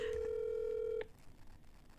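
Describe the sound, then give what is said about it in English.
A single steady telephone tone, like a ringback on a call being placed that nobody picks up, sounds clearly for about a second, then cuts off, leaving faint background hiss with no voices. “Why aren't they picking up the phone?”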